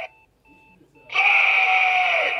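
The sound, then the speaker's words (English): A novelty Surge soda promotional alarm clock goes off: a few short electronic tone pulses, then a loud, harsh blaring wail that holds steady until the end. “that friend went on eBay, found this amazing alarm clock”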